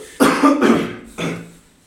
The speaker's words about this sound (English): I'll edit that out. Thanks. I'm joking. Just me coughing. You know what? Never mind. I'm keeping it in.